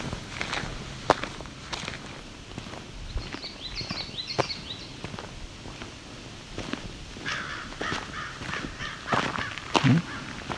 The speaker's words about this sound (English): Okay. Stirred up some crows. A hawk may be why.